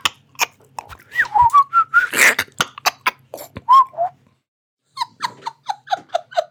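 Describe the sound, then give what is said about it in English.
A person whistles an imitation of a warbler call: quick trilling chirps and short rising-falling notes, a brief pause, then a rapid run of sharp descending chirps. “That wasn't very good. That was meant to be a warbler.”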